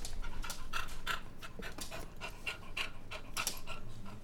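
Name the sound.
dog panting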